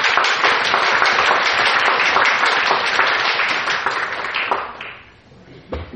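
A crowd applauds someone who has just finished a seven-day fast, with dense, steady clapping that keeps an even loudness for about four seconds before fading out, leaving a few scattered claps at the end.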